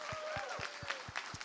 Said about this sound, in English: yeah, you guys can cheer her on.